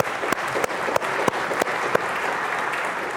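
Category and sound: crowd, audience clapping hands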